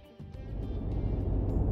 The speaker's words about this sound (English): The grunt of that WRC car sounds mind-blowing.